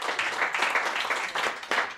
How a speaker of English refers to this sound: Yeah, come on, make some noise for that. Yeah. We clap here. It's cool to clap.